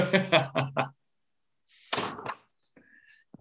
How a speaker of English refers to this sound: No, they're way too noisy. let me just close the door.